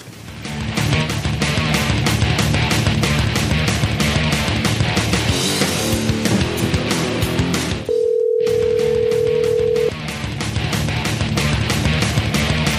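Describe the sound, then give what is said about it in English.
Upbeat music plays, then abruptly cuts out for a steady, clear telephone dial tone lasting about two seconds before the music resumes, as the show Shop Talk goes to the phone lines to call a guest. No one speaks. “So we're going to go to the phone lines right now and see if we can get him on for you.”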